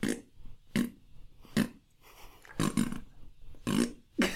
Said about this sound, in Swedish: Han ska bara, han har bara en fis i varje. Men det blir att han bara fisar hela tiden. Nu är det fishundar.